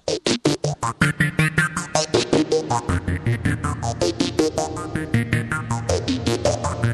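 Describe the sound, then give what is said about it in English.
A steady, rapid pulsing synth line with a slow sweeping phaser whoosh running through it, while a hall reverb is gradually faded up, swelling in and blurring the gaps between the loud beats. “And now I'm going to start fading up a hall reverb.”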